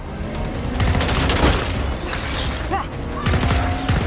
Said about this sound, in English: But before then, here's a car chase.